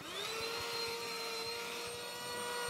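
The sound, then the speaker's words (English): A portable vacuum cleaner bought from the TikTok shop whirs up to speed and holds a steady, loud motor whine over a broad rushing hiss while cleaning a pillow, with faint irregular bumps underneath and no voices. “Who you know has a portable vacuum cleaner?”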